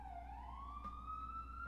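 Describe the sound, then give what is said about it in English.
An emergency vehicle siren wails outside in New York, its steady tone slowly rising in pitch over a low background rumble; it sounds muffled, with no one talking. “Holy fucking shit with the sirens today.”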